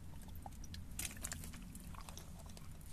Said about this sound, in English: That mug really sounded like a gulp.